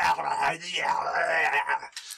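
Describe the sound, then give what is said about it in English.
A voice imitates snarling hobgoblins with a gravelly, monster-like growl and snarl. It is a sustained guttural vocalization lasting a couple of seconds, loud, with no actual words. “A couple of hobgoblins near you are like snarling at you and shouting things.”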